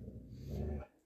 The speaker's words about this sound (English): That's exactly what I was meaning about having the dog in the background.